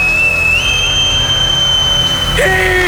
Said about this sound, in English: Hey, lads! On your toes! On your toes, lads! At the sound of my whistle!